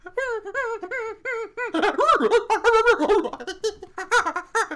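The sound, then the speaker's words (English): A person vocalizes rapid, high-pitched hooting and shrieking calls, imitating a chimpanzee, starting with short rhythmic squeaks and building into louder, excited chattering. No words are spoken. “You're speaking chimpanzee now.”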